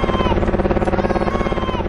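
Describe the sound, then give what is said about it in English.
A helicopter passes with a loud, steady, rapid thumping of rotor blades over a low engine drone, the rhythmic chop continuing evenly throughout with no one speaking. “Whatever was going on, that helicopter was certainly interested in something over there all of a sudden.”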